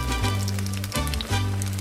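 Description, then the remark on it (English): Steady crackling sizzle of habanero peppers and tomatoes being grilled by a farmer as the first step of making salsa, a dense, even hiss of popping spatters over a low, humming drone, with no voices. “Whoa, I can hear them sizzling.”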